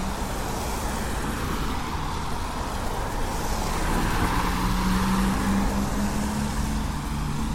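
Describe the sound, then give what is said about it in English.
A car passes on a wet road in the rain, its tires giving off a steady, loud hiss that swells slightly midway, with a low engine hum underneath and no voices. “Why the car is so much louder when it's raining? I guess just the wetness of the road surface against the tires.”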